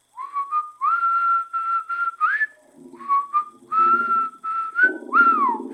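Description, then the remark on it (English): Someone whistles a short melody in several phrases, the notes sliding up and down between brief pauses, clear with no talking. “Definitely our enemy. The one that whistles.”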